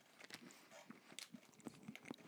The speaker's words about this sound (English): Dude, it's so many nuts. I swear, you get like 40,000 nuts. Do I have to hear you chew every one of them? What do you want me to do? To swallow the nuts? I just want you to close your mouth.